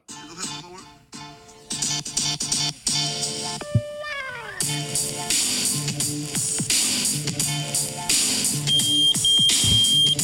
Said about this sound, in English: The old pager.